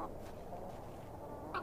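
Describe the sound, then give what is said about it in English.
Quiet, steady background hiss with faint clucking from hens and roosters, and one brief, slightly louder cluck near the end. No one speaks. “How about the rooster? He looks much too unruly to be picked up. The final hen.”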